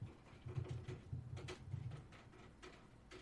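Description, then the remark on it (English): Water drips onto an air conditioner in irregular taps, sharp little ticks scattered every half second or so over a low, steady hum. Quiet throughout, with no voices. “Is rain, not rain, condensation rains down upon my air conditioner.”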